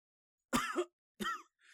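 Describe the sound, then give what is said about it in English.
Two forceful coughs in quick succession, harsh and throaty, followed by a soft breathy exhale, with no talking. “Got a cough to get off, little buddy.”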